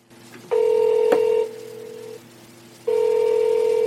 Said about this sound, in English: I think they're ignoring our phone call.